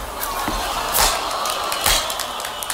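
A group slow claps, with loud, sharp claps spaced out at an uneven, unhurried pace that then speeds up, over a steady wash of crowd noise.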